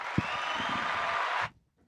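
A short burst of applause, a dense wash of overlapping claps that holds steady for about a second and a half before cutting off abruptly into silence.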